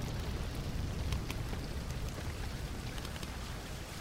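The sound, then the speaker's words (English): Steady, dense rain hisses continuously, with scattered sharper drops ticking through and a low rumbling undertone. It stays even in loudness throughout, with no voices. “There's red lights flashing around you, these old-timey sirens going off, and then it starts to rain.”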